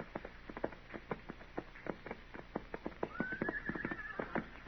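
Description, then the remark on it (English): Steady clip-clop of several saddled horses' hooves down a street at a brisk, uneven rhythm, with a horse whinnying partway through; no voices. “Dillon, what do you figure them horses are doing down there?”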